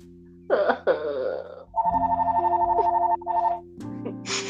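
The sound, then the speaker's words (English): A phone ringtone chimes in a rapid, repeating electronic pattern, following a short vocal exclamation, with a steady low hum underneath. “The concept of the oh my, not the phone.”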